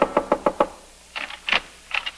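A quick burst of five sharp, loud knocks on an apartment door, someone knocking frantically in an urgent rhythm, followed after a brief pause by a few softer, scattered bumps.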